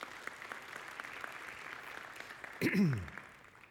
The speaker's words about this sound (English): And I think that we can clap for that. It's fine.